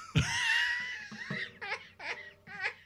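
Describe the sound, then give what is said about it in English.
A man who is under the weather imitates a dog's howl: one long, sustained, high-pitched wail that holds its tone, followed by three shorter wavering yips that rise and fall in pitch. “I want the howl.”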